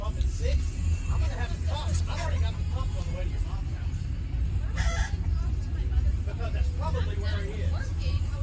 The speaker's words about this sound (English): Is that a chicken? Mm-hmm. Sounds like it.